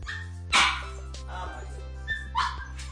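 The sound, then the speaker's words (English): A pet dog barks twice, one sharp bark followed by another a couple of seconds later, over a steady low electrical hum. “And please forgive me, I had to let my dog out.”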